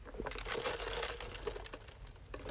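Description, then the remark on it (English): Someone slurps a large 7-Eleven Big Gulp fountain soda through a straw, a crackly, gurgling suck that runs steadily for a couple of seconds with faint ice rattle and no talking. “Forgive the ASMR, that was my big gulp.”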